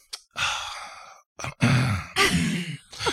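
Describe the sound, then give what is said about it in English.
A voice imitates a man's satisfied, refreshed exhale after drinking soda: a few drawn-out, breathy "ahh" sighs in quick succession, fairly loud, with no other talking. “Like this is not a Coca-Cola commercial. He was breathing and he was like.”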